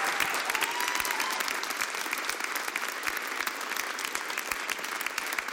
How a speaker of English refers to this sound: I just would love it if you could come stand up, get up on your feet, give him a warm round of applause, and let's honor Pastor Peter Haas.